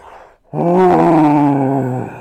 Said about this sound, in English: The bullman stormed past me like a freight train and bellowed with frustration and turned, but not toward me this time, toward my mother, who was setting Grover down on the grass.